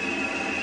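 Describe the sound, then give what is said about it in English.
A medium-frequency active sonar ping, the sonar the U.S. Navy uses to detect submarines at sea: a steady, piercing high tone held without a break over a dense, hissing wash of noise, with no one speaking. “This is the sound of medium-frequency active sonar.”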